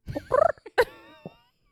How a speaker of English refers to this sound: All the bird calls. All the birds.